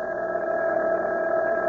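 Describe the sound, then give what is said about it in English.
A telephone rings with a steady, unbroken electric tone that holds for a couple of seconds at a fairly loud level, with no voices. “There's the phone. Answer it.”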